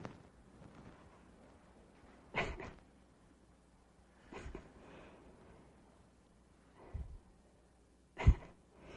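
A door being opened: a few separate clunks and knocks spaced a couple of seconds apart, fairly close, in an otherwise quiet room with no talking.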